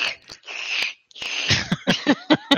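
A sound effect of loud, airy slurping from an empty milkshake container: a long hissing suck, a short pause, then a run of sputtering, gurgling pulses as air rattles through the straw. No one speaks.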